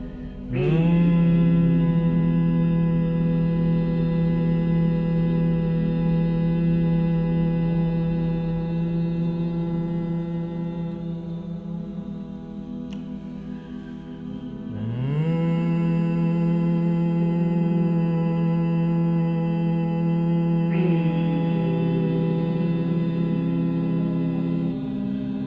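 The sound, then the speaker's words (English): A deep, steady human hum with rich harmonics, part of a guided breathing meditation. It is sustained for long stretches and renewed twice, with a slight pitch swoop at each start. It is loud and continuous, with no talking. “Stop the humming sound, continue with the deep, silent and slow breathing.”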